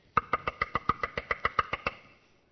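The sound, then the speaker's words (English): A rapid run of about a dozen sharp knocks on a door, evenly spaced, fading slightly toward the end with no voices. “someone's at the door.”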